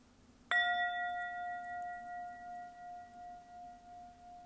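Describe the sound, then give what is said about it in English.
A single bell, the second of three rings, is struck once and rings out clearly, its bright, steady tone sustaining and slowly fading with a gentle wavering pulse. No one speaks. “The second bell is in honor of all of the teachings and messages and masters and just even the collaborative environment that has brought this intimate knowledge through the years right into our own lap.”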